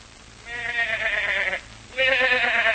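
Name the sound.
goat bleating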